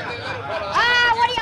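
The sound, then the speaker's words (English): A crowd chatters and jeers at a very short man in a dense babble of overlapping voices, with a few raised, rising shouts standing out over the steady murmur. “You bunch of chuckle-headed sheep. Did you ever see a midget before? Quiet down, the lot of you.”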